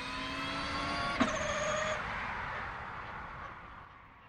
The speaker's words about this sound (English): Whatever the car, what you hear mostly is the wind noise, the aerodynamics noises. But it's a kind of like whoosh, you know, kind of wind noise that you get.